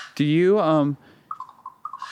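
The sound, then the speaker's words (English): A loud, drawn-out harmonic call sounds, then a series of short, evenly spaced bird calls repeats quietly outdoors. “Do you think that these birds like reggae?”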